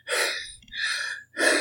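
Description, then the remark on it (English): A voice imitates heavy breathing: three loud, raspy breaths in quick succession, each a harsh airy rush separated by brief pauses, with no talking. “could probably hear, like, heavy breathing.”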